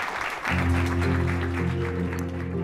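A crowd applauds steadily, a dense wash of many hands clapping throughout, while a low, sustained music bed swells in underneath after the first half second.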